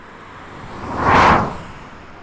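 A single car, a Toyota Matrix, whips past at high speed, recorded by swinging the microphone quickly past it; its engine noise swells quickly to a loud peak mid-clip and then fades away just as fast, with no talking.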